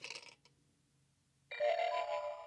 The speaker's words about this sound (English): I love the gong. Yeah. It's so funny.